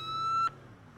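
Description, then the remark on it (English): A loud, steady ambulance siren tone holds for about half a second over a low engine rumble as the ambulance arrives at the scene, then cuts off abruptly, leaving only the rumble. “An ambulance arrives too.”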